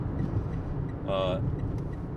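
Steady road rumble of a car driving and passing a very slow truck, a continuous low droning roar throughout, with a brief higher tonal whine rising over it midway.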